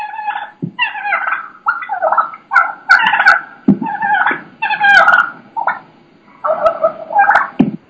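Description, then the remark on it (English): Wild turkeys attack a decoy, their excited purring and putting calls mixed with sharp thumps and flapping hits, in rapid bursts with no one speaking. “They're beating on my decoy. You can hear that.”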